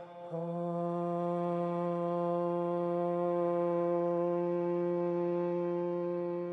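A single low hummed note, the second note added after the first three chants of a group Om chant, begins after a brief pause and holds steady and unbroken for about six seconds, rich in overtones, with no words spoken.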